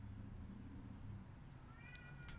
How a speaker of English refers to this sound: So this JoJo. Cat. He's the local. He's the local. What do you gotta say about the …? He loves the …. Oh, there we go. We got it. We got him on mic.